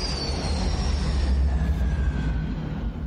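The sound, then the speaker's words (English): A loud airplane flyover: a continuous deep roar with a thin high whine that slowly falls in pitch as it passes by, with no voices. “Hit that airplane sound”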